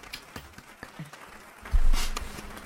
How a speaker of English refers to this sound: I'm clapping. It's the clapping. Wait, we need the clapping. Clapping at. Wait. What's the clapping button